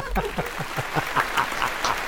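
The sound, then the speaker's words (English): Audience applause: a steady run of sharp, rhythmic claps at moderate volume, with a murmur of voices mixed in underneath. “You just put me in an applause sandwich.”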